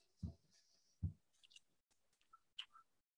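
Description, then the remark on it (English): Quiet sips of coffee: two soft low thumps like a mug being handled, followed by brief wet slurping and mouth sounds, with no one talking. “Let me take a sip of coffee and figure it out.”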